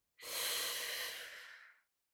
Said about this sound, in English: Let's look at our breathing. The best way to soothe. Deep breath in.